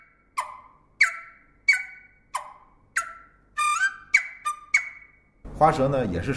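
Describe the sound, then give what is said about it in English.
A dizi flute plays about eight sharp chopped notes, each snapping down from a high chirp into a short decaying tone, mimicking bird twittering. A voice starts talking right after. “The chopped note is a sudden drop to the melodic note from a higher pitch, which requires perfect coordination of the tongue and fingers.”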